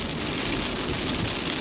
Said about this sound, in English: But this rain is relentless, and it doesn't make me exactly happy.